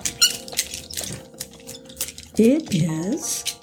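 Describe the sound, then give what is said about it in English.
A bottle of 2015 Canoe Ridge Reserve wine from Horse Heaven Hills being opened: a few light clinks and scrapes, then a rising, rubbery squeak as the cork twists free, louder toward the end. “You want to talk about this real quick while I open the bottle?”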